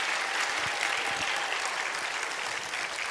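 An audience breaks into steady applause, a dense wash of many hands clapping at an even, sustained level for a few seconds with no voices standing out.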